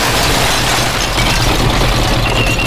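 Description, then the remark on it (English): A heavy armored police truck, a Bearcat (ballistic engineered armored response counterattack truck) of the Bluff Springs Police Department, idles with a steady, deep rumble and low throbbing hum, running continuously at an even, fairly loud level with a broad hiss above it. “That's a ballistic engineered armored response counterattack truck.”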